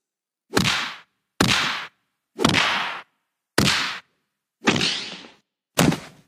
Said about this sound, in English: There's the Indiana Jones punch sound.